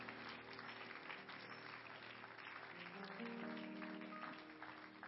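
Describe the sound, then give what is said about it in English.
A church audience claps steadily throughout in praise to the Lord, a dense wash of many hands, mixed with sustained organ-like musical tones underneath. “Everybody clap your hands to the Lord and give Him praise.”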